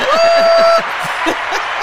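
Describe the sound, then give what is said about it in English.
An applause sound effect: a loud, sustained whistle-like whoop rides over dense crowd noise at first, then continues as rough cheering and clapping texture with scattered shouts, all without speech. “He's working his sound effects, y'all. I'm trying to figure out my sounds, y'all. That's the one right there. That's what I mean, right? The applause.”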